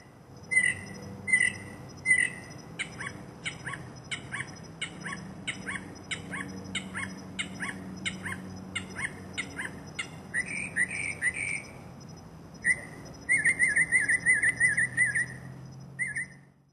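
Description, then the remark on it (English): A male mockingbird sings alone, cycling through dozens of varied calls: quick repeated chirps, then buzzy notes and a rapid trilling run, each motif repeated several times before switching, clear over faint background hum. “It was usually just one male bird cycling through dozens of calls, boasting its music collection to any female mockingbirds and curious humans in the area.”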